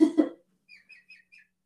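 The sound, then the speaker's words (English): A pet chicken, being covered up, lets out two rough, harsh squawks, then four short, high, rising chirps in quick succession, fairly quiet, with no talking. “Apparently chickens are like parrots. If you put a blanket over them, they go to sleep.”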